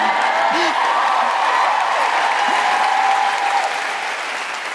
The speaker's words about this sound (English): feel free to cheer and clap.